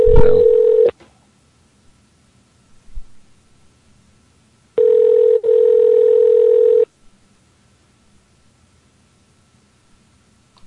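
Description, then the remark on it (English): Telephone line tones, a steady electronic hum: one short burst, then silence, then a longer, loud two-second tone with a tiny break, as a call is placed to the Royal Parks offices. No one speaks. “I needed to call the police, but I decided to call the park.”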